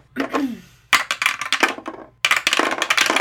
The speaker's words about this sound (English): All right, let's throw some dice. Dice.